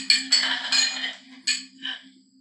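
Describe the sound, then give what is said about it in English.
A quick run of bright, ringing clinks, about five in a loose uneven rhythm, glasses tapped together in a toast, over a steady low hum. “Cheers. Cheers.”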